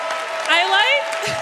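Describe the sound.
A crowd gives a standing ovation, applauding steadily in a dense wash of clapping that holds at an even level, with a single voice rising in a brief cheer over the middle of it.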